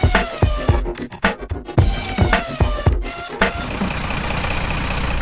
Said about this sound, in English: Right, we've been loaded onto a bus now. Given headsets, we've had our cameras taken off us, and we're off for the factory tour.